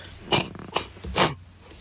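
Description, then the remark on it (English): Three short, forceful nose blows from a stuffy nose in quick succession, each a breathy honking burst with brief pauses between and no talking. “I got a blow my nose or something.”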